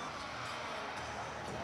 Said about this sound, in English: And when someone is really good, the crowd hypes them up, which is what's happening now. Honestly, it looks really fun.